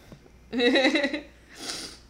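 sniffling

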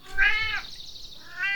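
cat meowing

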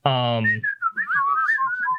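person attempting to whistle

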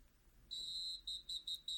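whistle blown

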